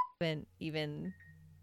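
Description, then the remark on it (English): A phone notification goes off: a quick high beep followed by two brighter, ringing electronic tones, fairly loud, with no talking underneath. “Oh, I didn't turn my phone off.”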